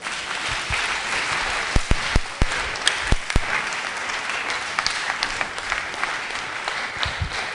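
A crowd at a pastor's sermon applauds steadily, a dense wash of many hands clapping at once, with a few sharper, louder individual claps popping out near the start and middle. No one speaks.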